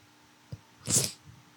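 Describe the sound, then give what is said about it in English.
A single quick sneeze, a short hissing burst with a brief soft catch just before it, fairly quiet against a faint background hum, with no one talking. “Bless you.”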